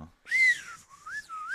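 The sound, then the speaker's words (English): A hunting whistle is blown in a few quick calls, a shrill rising note followed by wavering, warbling tones, fairly loud with no talking. “Blowing on them whistles.”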